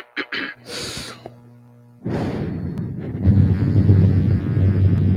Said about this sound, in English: Sorry, that's an air horn.